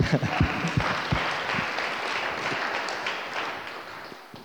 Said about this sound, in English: Isn't that comforting to know that we have an ever-present help in our time of need? Can you give him a clap for me?